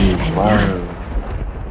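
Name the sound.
thunder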